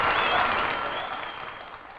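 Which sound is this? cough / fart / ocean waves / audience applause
audience applause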